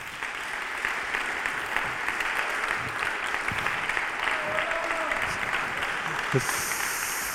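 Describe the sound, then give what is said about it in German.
Sustained audience applause at a poetry slam, welcoming all the slam performers on stage; a dense, steady roar of many hands clapping that holds evenly for the whole stretch, with a voice faintly audible underneath. “Begrüßen Sie erstmal nochmal mit einem großen, großen Applaus für alle Slammer.”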